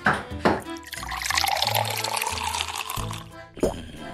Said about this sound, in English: If you don't mind, I'll drink some water first